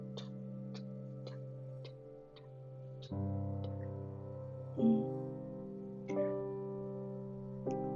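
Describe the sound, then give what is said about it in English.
A clock ticks steadily, about once every half second, over a sustained droning musical tone; the ticks are crisp at first, then become sparse and harder to pick out as deeper notes swell in. “Can you hear my clock ticking in the background?”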